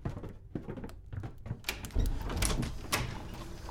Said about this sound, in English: there came a knocking at the street door. I went down to open it with a light heart